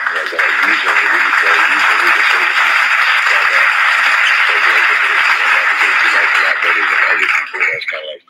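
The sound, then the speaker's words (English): Loud, dense applause from an audience, many hands clapping at once for a figure of 4.4 million members in the United States, holding steady for about eight seconds with some voices mixed in, then quickly dying away. “Yeah, clap that up.”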